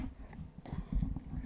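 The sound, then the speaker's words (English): A microphone gets knocked over by a cat: a soft bump followed by muffled, rumbling handling noises and low thuds as the mic shifts and settles, with no one speaking. “My cat just knocked the microphone over while we're podcasting here.”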